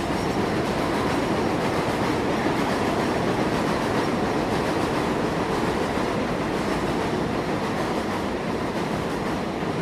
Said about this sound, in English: This is live, people. We can't control the trains.